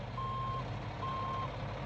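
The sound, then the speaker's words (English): A bus's reversing alarm beeps in a steady, evenly spaced pattern over a low diesel engine rumble as the driver backs the bus up into a car, with no one speaking. “Then, to our shock, the driver of the bus turned on his rear tail lights and began to attempt to back into us, apparently trying to ram into our vehicle.”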